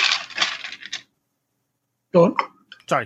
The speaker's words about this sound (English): There was a big noise there. That was me getting some ice out of the ice bucket.